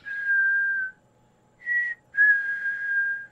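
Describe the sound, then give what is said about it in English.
A thrush sings three clear, pure whistled notes at a steady mid-high pitch: a long note, a brief short one after a pause, then another long note. No one speaks. “In this case, the thrush is saying, "Hello, I'm here. I'm all right."”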